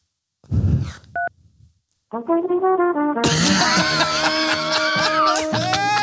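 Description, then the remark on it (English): While on hold with Apple support, a single short telephone keypad tone beeps once after a brief rough burst of noise, then there's a pause before busy, layered hold music starts up and carries on. “If you prefer to wait in silence, press 4.”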